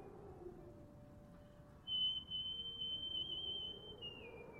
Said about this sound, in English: And when stress arose, she whistled away her worries with a happy little tune.